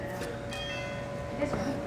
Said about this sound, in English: Does it ring a few times? Anybody else hear the bell?